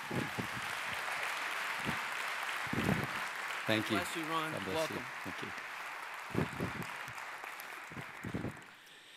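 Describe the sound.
Sustained audience applause at Moncton Wesleyan Church welcoming a guest speaker, a dense wash of clapping at moderate volume from start to finish, while a man speaks briefly over it near the middle.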